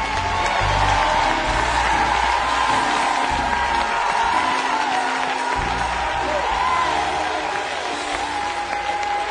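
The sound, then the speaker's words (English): An audience clapping and shouting, a steady wash of applause mixed with loud cheers and whoops that stays strong and continuous throughout. “And if you want that, you want to clap your hands and shout, yes.”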